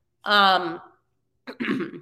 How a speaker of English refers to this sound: oh my God, I just like coughed, ew.